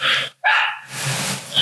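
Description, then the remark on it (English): Two sharp, loud dog barks separated by a brief pause, followed by a softer whining yelp trailing off at the end. “Whose dog is that?”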